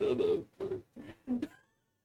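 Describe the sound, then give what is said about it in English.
A pet cat meows four times in quick succession, short insistent cries with brief pauses between them, moderately quiet, with no talking. “My cat was pissing off.”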